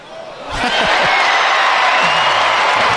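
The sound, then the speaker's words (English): A large basketball arena crowd erupts into loud, sustained cheering as a player makes the first of two free throws with 1.2 seconds left, swelling quickly from a murmur into a dense roar with whoops and shouts rising above it. “We'll let the crowd tell you what happens on free throw number one.”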